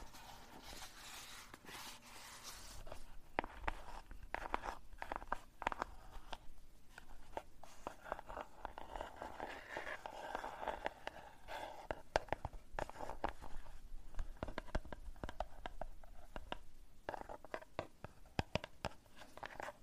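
Continuous scratching on a squishy paper-wrapped cardboard box, a dry, crinkly rasp with quick irregular strokes and small crunchy bursts that keep going steadily, with no voices.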